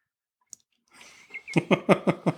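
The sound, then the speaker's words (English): A sharp little click, a soft rustle, then a steady run of five hollow, fairly loud pops as a tongue smacks against a plastic water bottle in a studio. No one speaks. “Because he just tongue-punched his water bottle there.”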